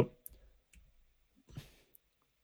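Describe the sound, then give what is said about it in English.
A handful of sharp clicks of the greater-than and less-than keyboard keys, tapped one at a time at an uneven pace to step a slowed-down video frame by frame, fairly quiet, with no talking. “Frame by frame. Oh yes, it is the greater than or less than keys.”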